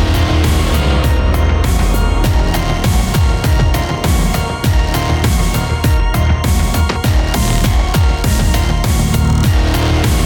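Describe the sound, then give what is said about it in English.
A loud, sustained crash as a truck that has lost a tire spins out of control in a desert and tumbles over and over into the sand, with heavy low rumbling and a steady stream of thuds and crunching impacts lasting the full ten seconds, no voices. “We fade away to the sounds of a truck barreling over and over into the sand.”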